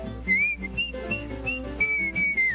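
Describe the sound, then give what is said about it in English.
Someone whistles a bright, cheerful melody, the clear notes rising and falling over a full musical backing, with a few sustained held tones. “Whistle loud and long.”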